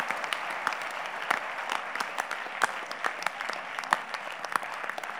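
An audience claps steadily, a dense wash of many hands with sharp individual claps popping through, holding a fairly even loudness for several seconds with no talking.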